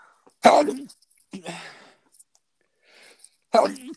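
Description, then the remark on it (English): Two sharp, loud sneezes burst out about three seconds apart, with a softer breathy rush of air just after the first one. “Bless you.”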